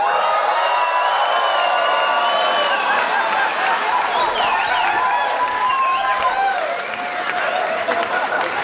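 A crowd claps loudly and steadily the whole way through, with rising whoops and cheers ringing out above the dense applause.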